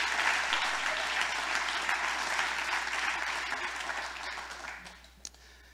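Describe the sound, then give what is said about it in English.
An audience gives a clap offering to the Lord at the third One Association convention meeting, clapping together in a dense, steady wash of applause that holds strong for several seconds, then thins and fades out near the end. “I think this is an opportunity for us to just clap, give the Lord a clap offering and say, thank you to the Lord for what he's doing among us.”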